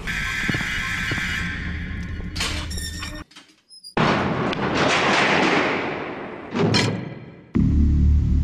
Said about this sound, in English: Really, quite the door.